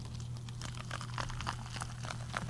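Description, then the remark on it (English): Soda being poured, heard as a faint, steady fizzing crackle of tiny pops and bubbles over a low constant hum, with no one talking. “Will it pick up this pour?”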